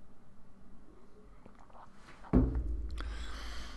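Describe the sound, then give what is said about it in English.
Someone takes a sip of a drink: faint handling noise, then a sudden low bump as the cup is lifted, followed by a soft, breathy slurp that trails off. No one speaks. “I'm just going to grab a sip here.”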